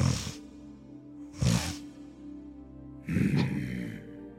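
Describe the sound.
A voice imitates a creature leaning in and sniffing someone: three short, breathy snuffling bursts spaced over a few seconds, each a sharp hissy inhale with a low rumble beneath, and quieter breathing in between.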